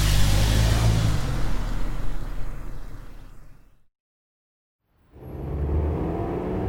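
A taxi cab rumbles past, its engine and road noise loud at first and fading away, then a brief hush before traffic noise swells back in.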